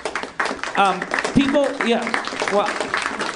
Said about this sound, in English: Doesn't it feel weird when you get applause and then you feel like, I didn't do that for applause.